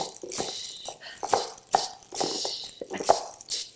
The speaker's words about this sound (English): The shakers in the band go ch-ch-ch. Let's hear them now.